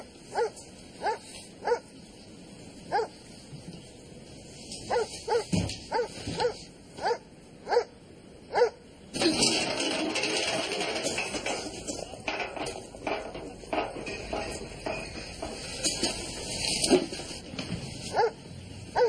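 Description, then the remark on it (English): Rottweiler guard dogs patrolling a site bark in a steady run of sharp, evenly spaced barks, then erupt into a louder, continuous flurry of barking and snarling. No one speaks. “Get in an arse full of Rottweiler gnashes.”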